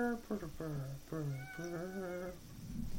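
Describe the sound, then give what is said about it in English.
A cat meows in a series of about five drawn-out, whiny calls, one right after another, trailing off into low rustling at the end. “Kitty does not like my singing.”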